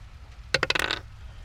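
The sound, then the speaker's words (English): Dice are rolled for an issue: a quick clatter of dice tumbling on a hard surface, a rapid run of bright clicks lasting about half a second before settling, with no voices. “Let's roll for an issue.”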